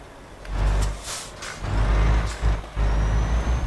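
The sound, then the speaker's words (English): A large truck idles and maneuvers, turning around to face the opposite direction at a factory unloading area, with a deep, steady engine rumble, punctuated by several sharp hissing bursts of air brakes, loud, with no talking. “We're going to whip around so we're facing in the opposite direction.”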